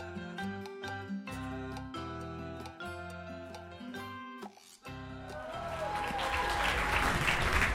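audience clapping

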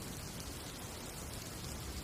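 storm rain

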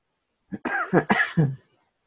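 cough

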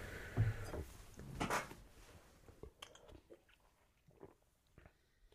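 sipping beer

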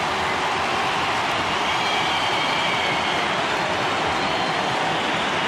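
stadium crowd roaring

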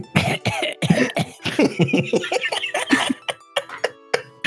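coughing

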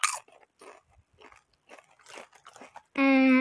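crunching

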